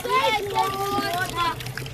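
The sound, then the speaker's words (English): Several voices, including children, chatter at a communal water tap in a settlement of corrugated zinc shacks, where people walk every day to get water, with light splashing and sloshing water underneath the steady busy outdoor bustle. “I am now next to a communal tap.”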